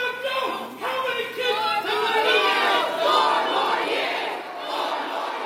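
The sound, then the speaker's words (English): At a Biden campaign event, a large crowd chants "4 more years" loudly in rhythmic unison, a dense wall of voices with repeated surging phrases that swamp a lone protester shouting underneath. “So we heard a protester there, and then the crowd immediately drowning them out with chants of 4 more years.”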